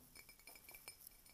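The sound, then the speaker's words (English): Glasses clink together as in a toast, a quick series of small, bright ringing taps repeating over about a second and a half, fairly faint and with no voices. “Clink.”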